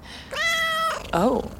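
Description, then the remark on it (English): A cat meows twice: first a long, steady, drawn-out meow, then a shorter, wavering one after a brief pause, with no one talking. “If you don't want the cat around, why do you keep the window open?”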